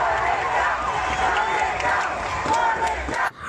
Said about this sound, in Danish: Riv den ned, råbte demonstranterne, der derefter trak den væltede statue igennem Bristols gader og efterfølgende kastede den i havnen.